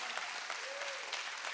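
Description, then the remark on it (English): Steady applause from an audience, a dense wash of many hands clapping at a moderate, even level, with a faint tonal hum drifting underneath and no voices standing out. “Y'all ought to clap better than that right there.”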